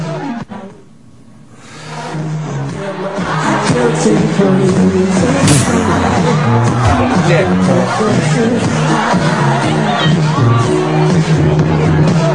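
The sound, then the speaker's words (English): A dense, roaring concert crowd din from a played-back video swells in after a brief quiet moment and stays loud and steady, a mass of overlapping voices and cheering, as a person in a wheelchair crowd-surfs. “It's a weird concert to be.”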